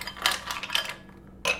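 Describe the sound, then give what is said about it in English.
Ice cubes clatter into a glass while making a shaken cocktail, in a few quick bright clinks, a short flurry of tumbling knocks, a pause, then one more sharp clink. “We're going to throw in some ice cubes.”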